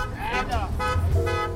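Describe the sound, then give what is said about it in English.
Several car horns honk and overlap in sustained, droning blasts over a low rumble of idling engines in a congested street of stopped traffic in Lagos, Nigeria. “In Lagos, Nigeria's largest metropolis and one of the most jammed-up cities in the world, some people see opportunity among the stopped cars.”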